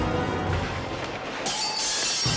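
A loud smashing crash with glass shattering as cars are smashed outside the Brooklyn federal courthouse by a mob of John Gotti's supporters, a dense burst of breaking shards that swells sharply midway and keeps clattering brightly to the end, with no voices.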